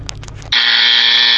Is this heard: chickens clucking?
no